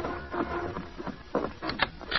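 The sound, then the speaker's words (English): A few sharp knocks rap on the door of the Kilby Ranch house in the evening, in an uneven cluster, firm and somewhat muffled, over a low constant hiss with no voices. “The following evening, there was a knock at the door of the Kilby Ranch house.”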